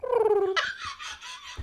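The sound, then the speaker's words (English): A voice hums a short electric-motor whine that glides slowly downward, then breaks into a breathy, hissing whoosh, mimicking a Segway scooter rolling past. “That one. The little Segway noise.”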